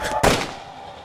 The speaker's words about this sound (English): 10 feet away, is a lone figure with a machine gun. He had an AK-47, and he had a red bandana. This is not an Israeli soldier. Across the plaza, a civilian runs across the street to escape the gunfire. And the guy turned the gun and shot him.